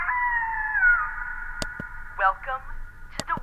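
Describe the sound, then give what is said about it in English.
A wolf howl sound effect: one long, sustained tonal wail that slowly sinks in pitch, with a few wavering bursts near the end and two sharp clicks cutting in. “Where do you keep the wolf? There's no wolf. It's just a sound effect.”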